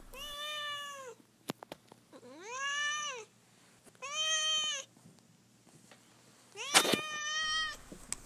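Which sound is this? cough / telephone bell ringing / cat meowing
cat meowing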